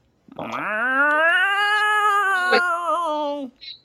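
A single long, drawn-out cat meow, loud, rising at the start and holding steady for about three seconds before cutting off, followed by a brief faint sound.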